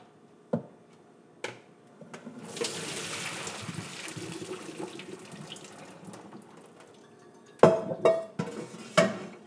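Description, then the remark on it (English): A steady gush of water pours into a sink for several seconds as cooked pasta noodles for pastitsio are drained, framed by sharp metallic clanks of a pot before and a cluster of clatters after; no one speaks. “Okay, noodles are done. I'm going to take those off the heat immediately, drain.”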